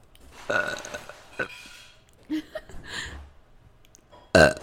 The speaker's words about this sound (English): Ready? I'm gonna burp on command. 1, 2, 3.